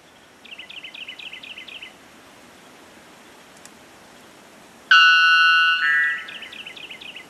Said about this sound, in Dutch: Hoor je dat? Dat is de witte klokvogel. En biologen vertellen dat die witte klokvogel de luidste lokroep ter wereld heeft. Geen enkele vogel roept harder.